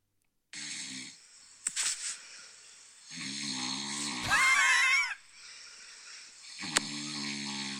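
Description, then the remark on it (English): Loud, rasping snoring of a sleeping person, recorded last night, with several ragged inhaled snores and a harsh, gurgling peak midway; no one talks over it. “this is what I have to listen to 6 or 7 times a night”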